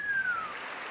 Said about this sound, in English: Giving y'all a big round of applause.